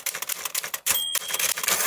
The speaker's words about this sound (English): That's it. Give me that typewriter.